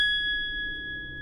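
A single bright bell ding rung to mark a newly learned fact, its pure tone sustaining steadily for over a second with no voices over it.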